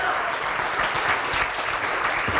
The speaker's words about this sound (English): So give one more round of applause for Ron Paul's former chief of staff, president of the Mises Institute, Jeff Dice.